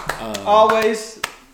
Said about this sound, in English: We can do it ourselves, but I got to clap it up for Wit Studios.